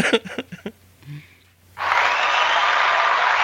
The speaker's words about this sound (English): That's live right there. That's people cheering, yeah.